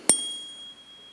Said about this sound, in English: And so when a tuner comes and tunes your piano to one of these, it's a tuning fork. And each one is set to vibrate, to resonate at a certain frequency. This one is at the note C.